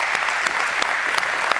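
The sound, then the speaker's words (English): An audience at Vertical church breaks into steady applause for the ordination of the church's new worship pastor, many hands clapping in a dense, even wash of sound with a few sharper claps standing out, and no voices over it. “Yes, I get a clap for that.”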